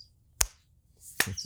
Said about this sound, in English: I clap nice and soft.